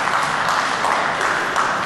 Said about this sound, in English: All right, clap your hands because you made it through this week, because that was a good week, all right?